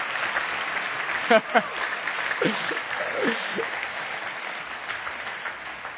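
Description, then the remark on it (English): A church audience claps for the Lord during a service in a dense, sustained wash of hand claps, with a few brief voices calling out over the applause partway through. “Can we just give him a hand clap?”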